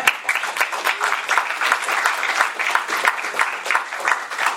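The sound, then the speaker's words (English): A crowd claps steadily, a dense, sustained wash of applause that holds at a fairly loud, even level throughout without any voices rising above it, applauding voters in the Seattle region approving a ballot measure for transit improvements. “Let's just applaud that.”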